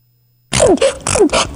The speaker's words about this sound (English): Poor girl, sneezing 20,000 times a day. But maybe he's got a cure for the sneezes.